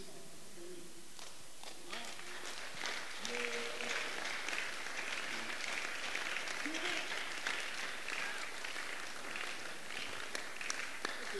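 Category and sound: crowd, audience clapping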